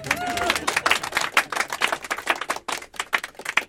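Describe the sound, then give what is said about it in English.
An audience claps steadily for a few seconds as a speaker is introduced to talk about a woman from the golden age of comics, a dense patter of crisp, bright hand claps with no voices on top. “You can clap now.”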